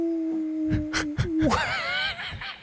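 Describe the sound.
A person imitates a dog's howl, holding a low steady tone that swoops up into a higher, wavering wail, with a few soft thumps or breaths along the way.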